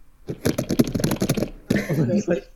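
Loud, rapid, excited clacking of a computer keyboard, a quick flurry of keystrokes followed by a brief pause and a second dense burst of typing.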